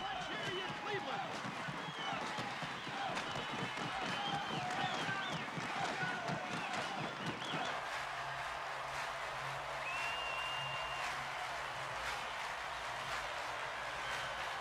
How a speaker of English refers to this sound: They're on their feet here, stomping, clapping. Come on, join in wherever you are out there.